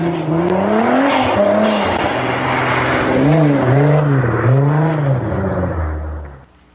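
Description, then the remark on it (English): A car skids with loud, squealing tires, the screech rising and falling in repeated wavering arcs over a roaring engine, continuous before fading at the end. “Unfortunately, that was not me driving. Unfortunately, that's not my car either.”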